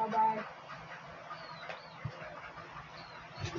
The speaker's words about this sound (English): Anyway, it's my chicken. His name, he's got a Chinese name, Xiaobai. That means Whitey.